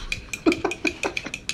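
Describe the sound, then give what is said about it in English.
A spoon stirs a drink in a cup, knocking the sides in a quick, steady run of about a dozen bright clinks, each with a faint ringing tone. No one speaks. “Clinking? Or no. What? Oh, stirring.”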